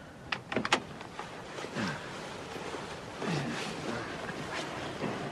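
A car door opens so a girl can be put on the back seat: a quick cluster of sharp latch clicks, followed by a couple of short creaking hinge sounds over a quiet background, with no one talking.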